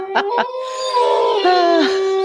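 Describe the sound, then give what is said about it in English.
A wolf gives two quick yelps, then lets out a long, steady, mournful howl that holds its pitch, loud with no talking over it. “Seriously, the wolf is dying.”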